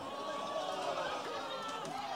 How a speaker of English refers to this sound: And for the people listening to the recording later, the crowd is saying, ooh.